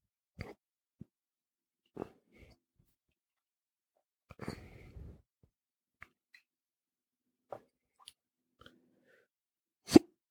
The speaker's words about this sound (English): You gotta hold the air while you're burping. All right, that's good. That was an easy one. Got rid of that quick? Yeah. I mean, most people that drink a lot know about those burps.